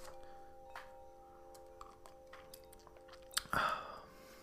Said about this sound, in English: sip of my tea quickly.